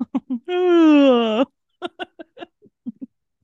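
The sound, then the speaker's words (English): A voice lets out a long, drawn-out, exaggerated cartoonish yawn lasting about a second, close and fairly loud, followed by a few short, choppy vocal bursts like brief chatter or chuckling. “Comical yawning for the rest of the episode from ….”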